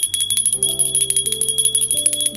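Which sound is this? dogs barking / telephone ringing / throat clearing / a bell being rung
a bell being rung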